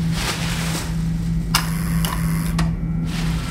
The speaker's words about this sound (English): Holding my breath, I walked to the left, dumped one of my rubbish bags down, and hit the door release button.